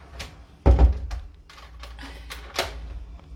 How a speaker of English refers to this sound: now the door opens, but there's nobody there. So maybe Stefan can close it